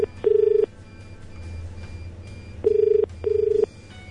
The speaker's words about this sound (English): Nope, still no answer. Gee, you'd think they'd be able to pick up the phone, wouldn't you?